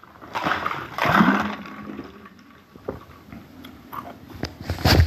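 Slurping and sipping 9.5 pH alkaline water from a partly frozen bottle kept on top of the freezer, with wet gulps and icy crackles coming in a few uneven bursts, fairly loud and with no talking.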